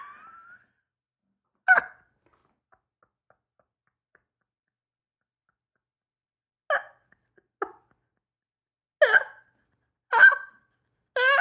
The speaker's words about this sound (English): That was the seagull.